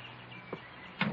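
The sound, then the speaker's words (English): A door is pushed shut: a light click, then a firmer, muffled thud a half second later, both moderately soft. “Come in and close the door.”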